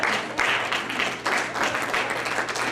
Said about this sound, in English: And hallelujah, we can clap for that.